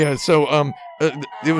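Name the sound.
police car siren passing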